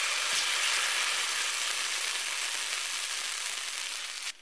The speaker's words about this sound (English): And I'm going to put some butter on there. Once your butter is nice and sizzling, you can spoon a little bit of your batter right onto your griddle and let it cook.